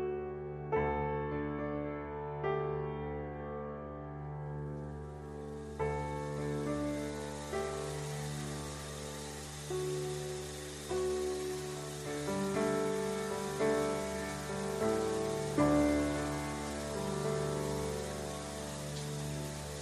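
A shower runs steadily, its continuous splashing hiss layered over a low sustained tonal hum with no one speaking.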